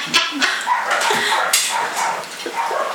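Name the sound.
dogs barking outside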